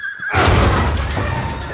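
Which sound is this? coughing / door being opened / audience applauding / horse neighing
horse neighing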